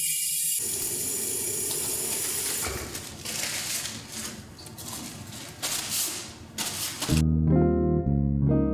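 Warm water runs steadily from a tap for several seconds, a continuous rushing splash as hands, thumbs and the backs of the hands are washed under it, before the sound cuts off and a bright musical tone takes over.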